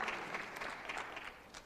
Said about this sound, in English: Thank God for a clap. Thank God for a clap.